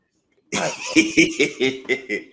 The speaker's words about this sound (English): I'm blowing my nose.